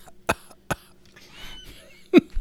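Three sharp coughs: two quick ones in succession, a short pause, then a third, louder cough, over a faint background hum with no talking.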